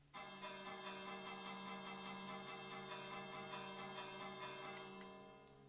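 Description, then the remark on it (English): A bell rings repeatedly in a fast, steady series of metallic strikes, its bright overtones sustaining and blending into a continuous shimmering tone that fades slightly at the end. “What do these bells do? They ring.”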